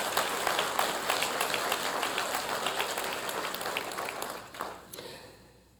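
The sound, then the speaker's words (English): A crowd applauds the teachers in a dense, steady wash of many overlapping claps, holding strong for several seconds before thinning out and fading near the end. No one speaks. “Yeah, give our teachers a round of applause.”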